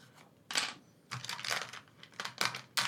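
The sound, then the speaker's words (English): Hard plastic dice clatter and rattle in several quick bursts as a hand rummages through a pile of dice, grabbing some out, fairly loud, with short pauses between grabs and no talking. “It sounds like I'm grabbing more than I am because I'm trying to grab them in the pile of dice that I have.”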